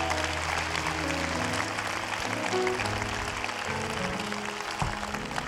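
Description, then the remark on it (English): An audience claps together in sustained applause, a dense steady patter of many hands that stays fairly loud throughout, with low sustained tones humming underneath. “We want to clap for you.”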